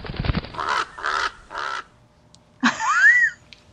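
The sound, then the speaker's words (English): A raven caws three times in quick, harsh bursts, then gives a longer, rising croak after a short pause, loud, with no talking. “Raven! What? Is that a crow? A raven, I mean.”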